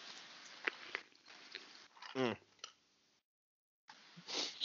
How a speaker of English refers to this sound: You heard that sip right there? You know why I took that sip?